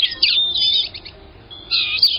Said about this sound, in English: It's today's Talkin' Birds featured feathered friend, Polyoptila cerula, the blue-gray gnatcatcher.